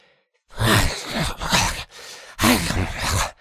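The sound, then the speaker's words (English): A voice imitates heavy, inhuman breathing: three loud, rasping breaths, each with a low guttural growl running through it, rising and falling in a slow, labored rhythm. “An inhuman seeming heavy breathing and almost growling.”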